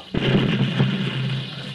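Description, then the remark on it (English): A single loud cannon shot, fired from a mission in front of charging riders to stop their charge, bursts out abruptly, then rolls into a heavy, sustained rumble that stays strong and fades only slightly over the next second and a half, with no voices. “The cannon. Make ready to fire.”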